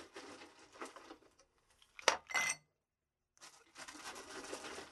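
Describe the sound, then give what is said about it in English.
Ice rattles and rustles as it is scooped for a drink, then a couple of bright, ringing clinks as cubes drop into a glass, followed by more rattling and shifting of ice. No one speaks. “All right, let's get some ice.”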